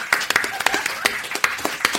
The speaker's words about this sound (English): Like please, a large Dixie Queen round of applause